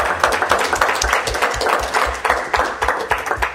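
An audience breaks into a steady round of applause, many hands clapping in a dense, continuous patter at an even volume for several seconds with no voices.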